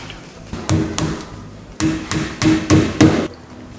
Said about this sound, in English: When you're nailing on the back piece, don't skimp on the nails because this adds structural strength to the cabinet. And it can be a little tricky, but a little bit of practice, you can do it.